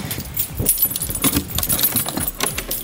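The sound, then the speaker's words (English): Keys jangle in a series of quick metallic clinks and rattles as someone who has just arrived home unlocks the door to their house in Tasmania, with no one speaking. “So I've just arrived home and I'm just going to go into the house. There's the keys.”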